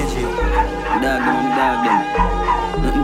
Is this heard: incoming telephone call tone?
no